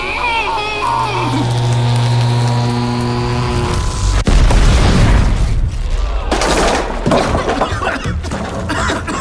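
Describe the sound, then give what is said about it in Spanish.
A chair explodes: a steady electrical hum with layered tones builds for a few seconds, then a sudden loud blast bursts out, followed by harsh crackling and sputtering bursts. “¡La silla! ¡Ha explotado!”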